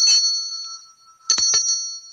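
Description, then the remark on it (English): A small bell rings, one bright strike whose tone hangs on, then a quick cluster of two or three strikes, with the high metallic ring lingering throughout. “We're doing the bell thing, are we?”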